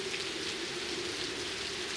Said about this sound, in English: I see falling rain. Earth replenishing itself.